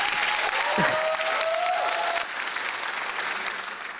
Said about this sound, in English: Audience, big round of applause.